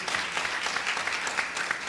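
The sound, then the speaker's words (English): A church audience claps their hands for 24 men standing up front, a steady wash of many overlapping claps sustained and fairly loud throughout, with no voices rising above it. “So just a hand clap to them one more time because being a man.”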